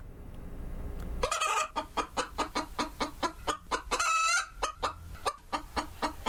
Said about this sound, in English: Well, it can't be that easy. That's got to be a chicken. Yes, it is a chicken, but take a guess. Is it a rooster or is it a hen?